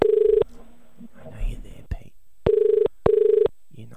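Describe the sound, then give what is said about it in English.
Telephone ringing out over the line as a call is placed to a Blockbuster shop in Bondi, Sydney: a steady buzzing ringback tone in a short single burst, then a double burst, with faint murmuring and shuffling in the gap between. “Well, we're dialing the shop in Sydney.”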